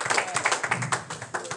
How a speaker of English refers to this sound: If I had three people to clap their hands on that, you must be able to pray God just that alone.